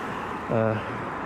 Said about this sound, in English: I've got a mask on, the microphone in my hand is covered in an actual sock, and there's the roar of the traffic, so I don't know if anyone can actually hear this, but anyway.